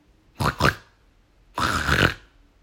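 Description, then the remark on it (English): A person imitates a pig with their voice: two quick, rough snorting grunts followed by one longer, drawn-out grunt, fairly loud with brief pauses between, and no talking. “Did you guess a pig?”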